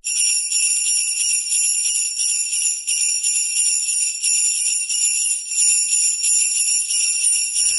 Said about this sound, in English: It's more Latin than... That's a different sound, but not one. Yeah, I could jazz it up a bit so it sounds like a sleigh bell.